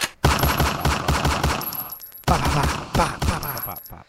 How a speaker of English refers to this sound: What they didn't tell you is it also comes with a gunshot through your window.